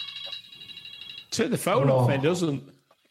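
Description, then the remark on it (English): The speaker's mobile phone rings with a steady electronic tone for just over a second, then stops as someone starts talking loudly. “Turn my phone off.”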